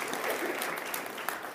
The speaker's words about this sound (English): Some of you wanted to applaud that. That's very exciting for our church.